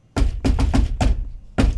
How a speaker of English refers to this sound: You know what that's called? No. The shave and a haircut knock. Shave and a haircut. Knock, knock. Two bits.